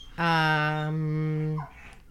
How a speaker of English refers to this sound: And now the dog's going crazy.